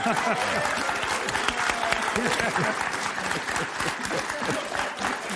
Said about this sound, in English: That's a mock clap.